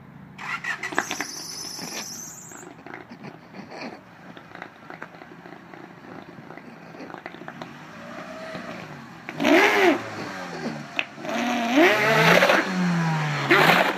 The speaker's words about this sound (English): This episode's audio clip is of a bicycle tube stretched over a car's exhaust pipe. Here we go.